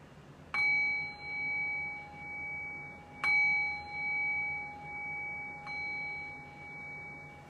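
A meditation bell is struck three times at a slow, even pace to mark the shift from a guided meditation back to conversation, each clear ringing tone swelling and lingering into a long, shimmering decay that overlaps the next strike. No voices.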